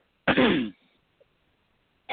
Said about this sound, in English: I can't stop coughing.